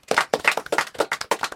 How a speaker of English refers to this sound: Can everyone give Lydia a massive round of applause?